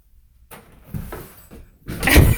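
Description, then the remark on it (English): A closet door slides open with a soft rolling scrape as a dog's ball is put inside, then shuts again with a louder, fuller bump about a second later, with no voices. “You can go ahead and just put it in this closet so you don't have to walk all the way down.”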